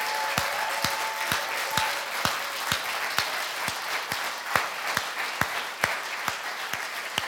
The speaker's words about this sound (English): I want us to start this day by giving a clap offering to God Almighty. For He is the King of Kings, He is the Lord of Lords, He is the Creator of the universe, and He deserves all our worship. Let's give God a round of applause.